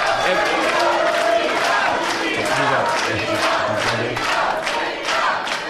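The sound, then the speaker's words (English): A live audience of fans yells and shouts together in a loud, continuous roar, many voices overlapping in rough chanted bursts without a break for the whole stretch. “I think they're yelling that because they're all fans.”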